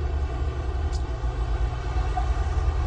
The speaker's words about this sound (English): Ooh, big truck. He has flammables, and he was flying right behind us.